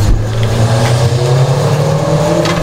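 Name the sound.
car engine revving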